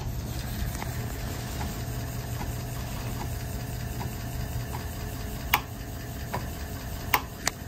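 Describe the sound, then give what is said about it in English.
A 5.25-inch floppy disk drive, wired up to a Feather board running a mass storage demo, spins with a steady low motor hum and faint regular ticking, then a few sharper, louder clicks near the end. Nobody speaks. “You spin me right round, baby, right round, like a floppy disk.”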